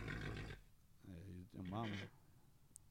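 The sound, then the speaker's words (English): A horse neighs in two bursts after a short rush of noise, played as a sound effect; the second call is louder, with a wavering, shaky whinny that trails off, heard clearly. “And they ripped off his finger and then I started playing horse sounds and then he was like already hitting the Jameson so hard he starts fighting with the horse.”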